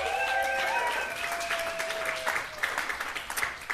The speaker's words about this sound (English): Thank you. Welcome back to Long Night. How about another round of applause for Cyrus Marcus Ware?